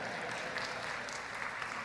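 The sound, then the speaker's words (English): A short burst of thin, scattered applause from a small group, a light steady patter of clapping with no voices over it, lasting about two seconds. “Any applause?”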